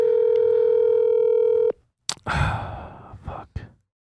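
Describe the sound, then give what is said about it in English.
A steady, loud telephone dial tone hums over the line for under two seconds, then cuts off abruptly, followed by a breathy exhale and a few short rustling bursts. “Oh, you're going to call me and then not answer your phone”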